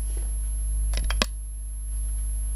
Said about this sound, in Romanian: Să-mi pun ochelarii.